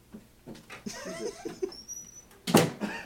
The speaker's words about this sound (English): I could barely hear it, so no one will really be able to hear it. Okay, cool. Well, if it is, you know, my dog was chewing on a bone with zero regard to anyone around him.